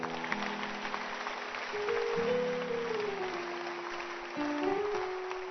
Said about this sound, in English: If today is your first time, stand to your feet. Welcome. The rest of you, clap for them.